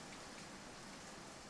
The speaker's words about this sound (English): After pulling out of the McDonald's on Lehigh Avenue, Gary made a right onto Fifth Street and continued north through the rain as it turned into sleet.